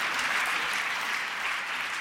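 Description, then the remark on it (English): An audience of citizens applauds for themselves, clapping steadily in a dense, even wash of many hands at a constant loudness throughout, with no voices rising above it. “And so it seems to me, yeah, you can applaud for yourself.”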